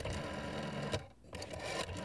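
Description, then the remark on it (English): Someone picks up the receiver and dials an old rotary phone, its dial whirring and clicking as it spins back, two steady mechanical runs separated by a brief pause, fairly loud with no voices. “And begins to dial. It takes a while because it's one of those really old dial phones.”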